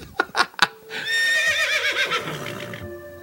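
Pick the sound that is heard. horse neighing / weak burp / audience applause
horse neighing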